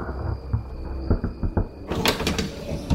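A closet door slides open with a rough, rumbling scrape that grows louder partway through, over a faint steady electrical whine and a few soft low knocks. No one speaks.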